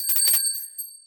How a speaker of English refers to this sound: Okay, I'm going to ring the bell for you pronouncing the name of that business.